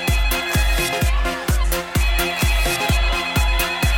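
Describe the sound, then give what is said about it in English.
A phone rings in the Prime Minister's office with a loud electronic ringtone: a steady, thumping beat about twice a second under sustained bright tones, continuous, with no voices. “Can someone answer that?”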